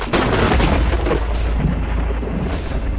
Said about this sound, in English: So this smashes into the creature, and you all can hear the thunder coming from the dining room.